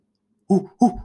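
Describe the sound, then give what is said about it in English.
A person mimics an owl with two quick hoots in a row, a short pause between them, clear and fairly loud against near silence. “I'd like us both to attempt to try to make the noise of each animal that we say. So, owl.”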